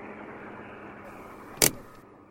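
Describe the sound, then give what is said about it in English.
A car approaches, its steady engine and road rumble holding at an even level, broken near the end by one sharp, brief click or thump. No one speaks. “Look, Sprightly, a car. Stop! Hey, stop!”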